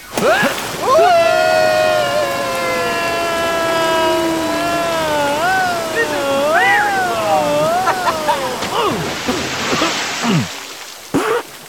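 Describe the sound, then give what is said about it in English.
A voice imitates a long, wavering slide down a long water slide leading directly to a temple's entrance, its pitch gliding and wobbling for several seconds before ending in a short, noisy splash. “Are we jumping down this long, previously unestablished water slide that leads directly to the temple's entrance, or what?”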